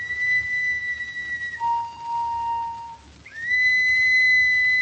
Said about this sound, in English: Boy, these old whistles sure do the trick, don't they? I guess there's nothing much better to signal with.